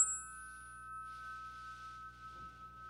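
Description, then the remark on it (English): A chime rings out with a clear, sustained metallic tone that hangs steadily throughout, fairly soft and without any talking, its bright overtones shimmering above a low hum. “I just love ringing the chimes for you and sharing all the wonderful and magical sounds.”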